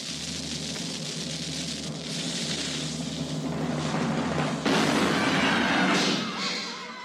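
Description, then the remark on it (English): A cannon-firing sound effect: a dense, rumbling roar that swells and then bursts louder partway through, followed by a sustained crackling blast. It is loud, with no talking. “All right, so we got the word, fire the cannon!”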